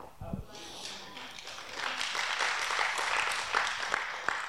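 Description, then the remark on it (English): An audience breaks into clapping that swells after a moment into a steady, dense patter, with a few sharper individual claps standing out and crowd voices mixed in. “Y'all clap.”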